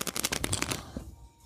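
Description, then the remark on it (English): A quick riffle of playing cards being shuffled, a rapid burst of crisp flutters lasting under a second before trailing off into a softer, quiet tail. “You know, I call it shuffle the deck time.”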